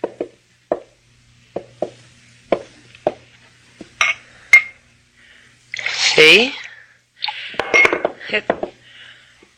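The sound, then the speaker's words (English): A water pitcher from a table and a glass being handled: a series of light taps and clinks, then louder glassy knocks and a sloshing, ringing burst, with a brief spoken word. “That water pitcher there on the table. Why don't you get it?”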